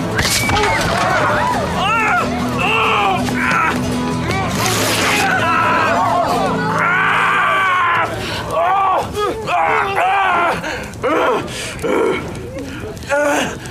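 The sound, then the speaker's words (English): Loud, chaotic commotion of overlapping caveman-style vocalizations: guttural grunts, groans and yells, with several voices shouting at once and occasional louder screams amid constant noisy clatter, as a man playing a caveman falls into a burning pork roast, swings a flaming stick like a club and has his shirt ripped open. “while getting his shirt ripped open and spouting guttural caveman noises.”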